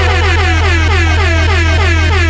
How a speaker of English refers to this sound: Hit my air horn.